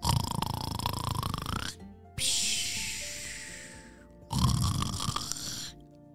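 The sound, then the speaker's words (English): A voice imitates a fish snoring with bubbly, gurgling breaths: two long, loud rattling snores separated by a softer hissing exhale, clear with no talking. “Have you ever heard a fish snore? That's pretty silly. There's lots of bubbles involved.”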